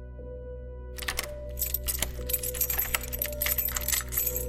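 A bunch of keys jangles for several seconds, with sharp metallic clicks as a door lock is worked open, over a steady low background hum.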